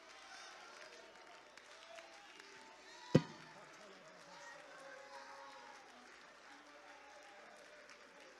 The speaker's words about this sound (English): Don't stop that hand clap. Don't stop that hand clap.